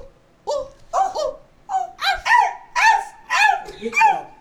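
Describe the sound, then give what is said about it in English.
A person imitates a dog barking, giving about eight quick, loud woofs in a steady rhythm, with nothing else behind them. “Woof, woof, woof, woof, woof.”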